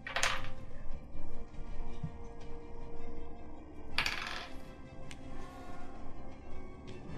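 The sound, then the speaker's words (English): Dice rolled for initiative in a tabletop game rattle and clatter onto a hard surface in two bursts, a sharp cluster of clicks at the start and another a few seconds later, with faint tapping in between and no talking. “Okay, let me just get some initiative rolls for these buggers.”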